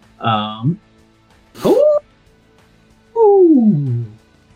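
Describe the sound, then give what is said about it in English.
A person imitates an animal howl three times to describe a game character howling out: two short, wavering cries with rising pitch, then a longer howl sliding downward, separated by brief pauses and no spoken words. “Just howls out. Tala does. That's me describing what just happened. Using howl sounds.”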